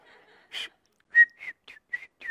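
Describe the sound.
A person whistles an imitation of baby chicks peeping: a string of short, high chirps, about six, some breathy, coming in a quick, uneven rhythm with no talking.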